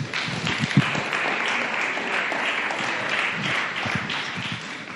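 Steady audience applause fills the whole stretch, a dense wash of many hands clapping at a fairly even loudness with a few sharper individual claps standing out.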